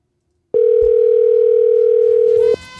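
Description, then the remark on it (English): A single steady electronic ringback tone from an outgoing phone call, one unbroken two-second burst, loud, with faint background noise before and after it. “Answer that phone. Answer that phone.”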